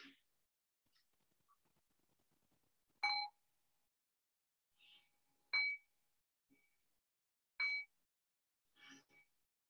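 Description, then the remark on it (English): A meditation bell rings out three times at an unhurried, even pace to close a meditation, each clear, bright strike fading quickly, with a few faint incidental knocks in between and no one speaking. “And then the next breath or two, I'll ring the bell and bring us back into a conversational space.”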